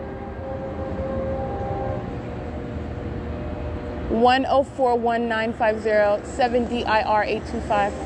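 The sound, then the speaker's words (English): A low, steady rumble of a passing Metrolink commuter train fills the background, with a person speaking clearly over it partway through. “That's Metro Link engaging in the POC, it's audible activity creation.”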